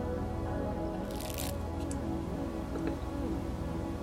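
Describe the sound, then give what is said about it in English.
A short, soft slurp of someone sipping Dunkin' Donuts coffee, followed by a few faint clicks and a small swallow, over a steady low background hum, with no talking. “But I'm going to take another sip.”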